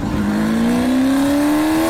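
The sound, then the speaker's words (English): Fabian Coulthard's Mustang supercar engine roars loudly, its throaty note climbing steadily in pitch as it accelerates for about two seconds, with no one talking over it. “me, Fabian Coulthard, picking up another passenger in my 1-3 Fabs Mustang supercar taxi.”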